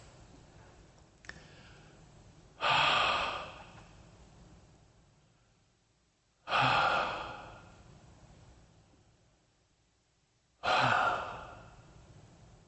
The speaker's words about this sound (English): As she moved her flippers, burying this life, it wasn't the image that was so powerful for me. It was her breath.